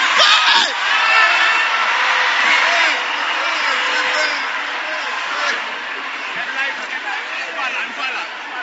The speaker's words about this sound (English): Wait, you will not hear what I'm saying. You are shouting.